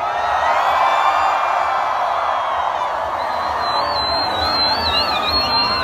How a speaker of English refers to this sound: And on the count of three, scream as loud as you can. 1, 2, 3.